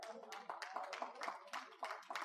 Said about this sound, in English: I ain't got but one hand clap up there.